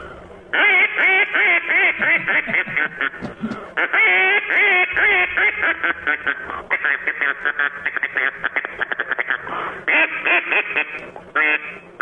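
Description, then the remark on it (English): A duck call is blown in a studio in rapid, raspy quacking bursts, loud, with a steady run of nasal quacks and short pauses between sequences, imitating a duck. “How about that for a duck call?”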